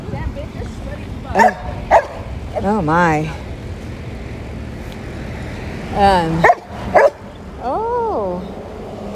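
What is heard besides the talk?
dogs barking excitedly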